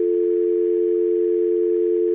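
A steady telephone dial tone hums continuously after a call ends, loud and unbroken for the whole stretch, with a thin, narrowband phone-line quality and no voices.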